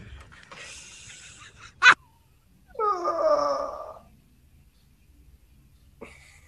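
A dog lets out a sudden sharp yelp, then a high, wavering whimper that lasts about a second, clear, with no talking around it.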